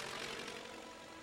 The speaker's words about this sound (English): Uh-oh. Airplane. Speaking of signs. Did you see that?